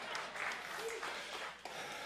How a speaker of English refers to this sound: Sparse clapping, but clapping nevertheless.